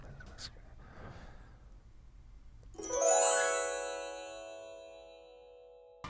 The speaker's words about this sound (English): And here we go with the old Pandora music going down.